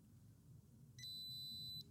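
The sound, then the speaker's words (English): A phone's text message notification sounds as one loud, steady, high-pitched electronic beep lasting under a second, over a low background rumble with no talking. “That's what my phone sounds like now.”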